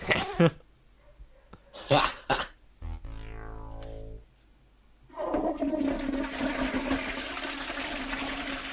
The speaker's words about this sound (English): And the flush. You've been gonged and flushed.